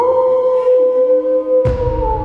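wolf howling

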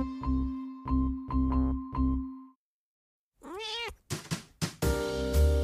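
domestic cat vocalizing

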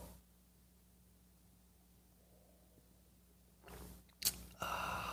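sipping coffee

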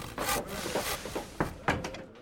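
door being closed

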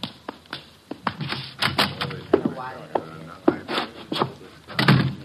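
door being opened

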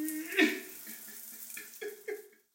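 shower water running

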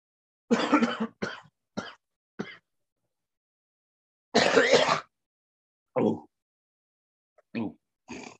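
coughing fit

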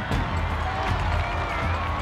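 crowd erupting in applause

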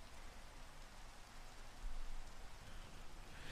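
rain falling

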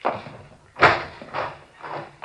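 door opening and closing

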